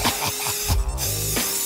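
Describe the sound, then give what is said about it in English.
A spray paint can hisses in steady bursts as paint is sprayed on a wall, with a short pause midway before the spraying resumes. The sound is moderately loud, and nobody speaks. “Hey, let's go spray paint those walls over there right now.”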